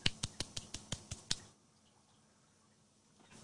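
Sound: light golf clap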